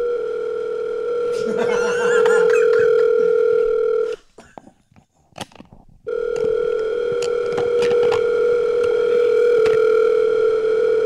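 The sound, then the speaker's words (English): A steady telephone line tone from a phone call being placed hums loudly and continuously, cutting out for about two seconds midway before resuming; a faint voice murmurs briefly near the start. “Should we call the mayor and announce?”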